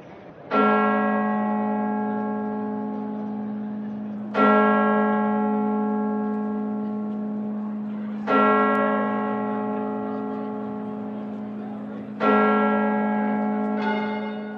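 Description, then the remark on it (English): The large church bells of St. Paul's Cathedral in London ring out in slow, evenly spaced strikes about every four seconds, each deep, resonant tone swelling and lingering into the next, with a final stroke overlapping near the end. They rang for 15 minutes on Sunday, March 20th, 2022. “The bells of St. Paul's Cathedral in London rang for 15 minutes today, together with the bells of churches in Lvov and churches and cathedrals across Europe, including Paris, Cologne, Madrid, Vienna, and Berlin.”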